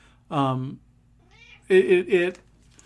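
A pet cat meows loudly: one drawn-out meow, a brief pause, then three quick meows in a row, with no one talking.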